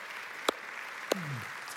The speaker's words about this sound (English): Can we just give those ladies a round of applause? Give God a round of applause.